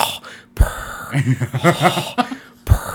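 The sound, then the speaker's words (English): A voice imitates Darth Vader's mechanical breathing: two harsh, raspy breath bursts bracket a short stretch of voiced, chuckling sound, fairly loud and with no words spoken. “like that was how he breathed”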